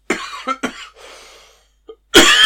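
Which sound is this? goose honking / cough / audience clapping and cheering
cough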